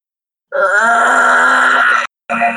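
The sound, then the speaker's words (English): A voice imitates a creaking trapdoor being pushed open with a staff: a loud, drawn-out groaning creak lasting about a second and a half, then a brief pause and a short vocal burst like the heavy thud of the trapdoor landing on the opposite side. “This loud creaking sound as this trapdoor opens up, and then a thud as it lands on the opposite side of the.”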